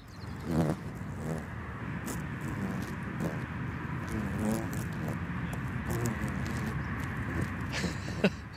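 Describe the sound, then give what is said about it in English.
Deep, droning buzzes of large orange dung flies hovering over and landing on the surface of a cow pat rise and fade in short bursts over a steady rushing, crackling background, with no one talking. “And they have this really quite deep buzzing sound, which I'm really interested to know how it sounds from within.”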